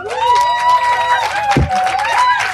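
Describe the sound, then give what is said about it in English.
Loud, steady audience applause at a Village Witches talk as a speaker is introduced, a dense patter of many hands clapping at once, with high cheering and whoops from the crowd rising over it throughout. “So let's give her a warm applause.”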